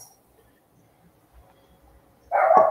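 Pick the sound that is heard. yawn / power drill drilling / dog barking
dog barking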